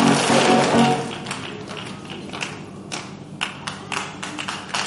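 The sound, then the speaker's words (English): A crowd claps hands in a loose, uneven patter, a dense wash at first that thins into scattered sharp claps with brief gaps between them, as they are told to clap their hands and forsake any business and trade in their lives. “Clap your hands and say, any business and any trade going on in my life, I forsake them.”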